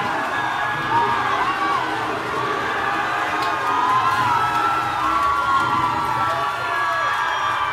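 A large crowd cheers and shouts nonstop at Arya's stab in Game of Thrones, a dense roar of many overlapping voices with high whoops rising above it, staying loud and steady for the whole stretch.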